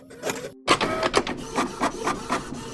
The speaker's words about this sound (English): Computers across the city began flashing ransomware messages, and some of the city's printers suddenly sprung to life. Shooting out messages as if they had a mind of their own.